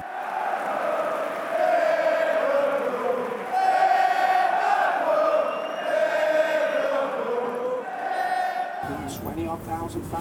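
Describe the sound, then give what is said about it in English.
A massive stadium crowd of thousands of Liverpool fans chants "Liverpool" in loud, drawn-out, rhythmic phrases that repeat every couple of seconds. The roar of many voices stays strong and sustained until it cuts off abruptly near the end. “Odd thousand fans screaming it. Unbelievable, the power of it.”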